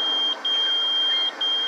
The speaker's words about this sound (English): No, that wasn't my beeper. Man, I don't know somebody else.